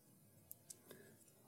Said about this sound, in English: Oh, love those Bible pages turning.